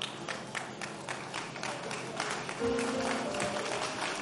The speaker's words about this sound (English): It's only the men of God who clap.